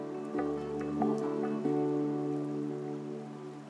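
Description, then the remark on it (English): River water flows slowly through ice and under a bridge on a reservation, its banks frozen over and snowflakes falling, with soft trickling and dripping. A steady low tonal hum runs underneath the whole time, and no one speaks. “The water moves slowly through the ice and under the bridge we stand on.”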